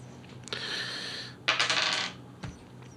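Two dice clatter across a hard table in two quick bursts, a sharp tumble followed by a longer rattling roll, then one last light click, fairly loud with no talking.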